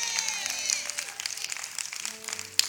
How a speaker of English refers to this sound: Go ahead and clap for Jesus.